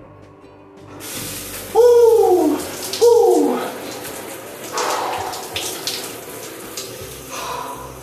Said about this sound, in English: Yeah, cold shower. I think this does more refreshingness to me than the run. I think I get more out of this than the run